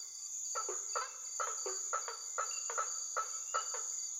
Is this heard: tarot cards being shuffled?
no